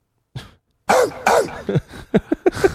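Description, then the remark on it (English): A dog barks, a brief yelp followed by two loud barks and then a quicker run of short, sharp yaps, played as a sound clip, with no one talking. “We got a bark over here somewhere. Yeah, here it is.”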